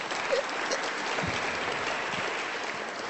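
A steady round of applause from an audience, many hands clapping in a dense, even wash that holds at a constant loudness for about three seconds, with no voices standing out.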